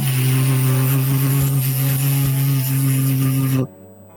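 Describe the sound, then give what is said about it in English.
A distant drone buzzes with a steady, low-pitched droning hum and layered harmonics, holding constant for several seconds before cutting off abruptly. No one speaks. “Sounds like a drone.”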